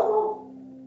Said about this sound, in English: Hush. Hush. It's okay. Calm down. Yeah, we got two dogs as well, and they like to bark.